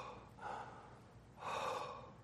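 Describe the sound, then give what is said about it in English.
A voice imitates the labored breathing of a dying person: two long, rasping breaths, each a drawn-out heavy gasp with a pause between, fairly quiet, with no words spoken. “Have you ever been by the side of a dying man or a dying woman? Especially a loved one? And the belabored breathing.”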